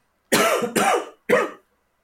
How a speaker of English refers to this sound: Excuse me, about to cough.